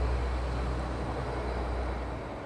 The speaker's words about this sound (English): Sorry, there's a truck going past.